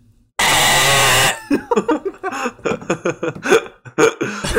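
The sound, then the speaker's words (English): A voice imitates a wrong-answer buzzer with one loud, harsh, raspy buzz held for about a second, then breaks into choppy laughter and vocal sounds. “Let's see who can make the best buzzer, wrong buzzer sound.”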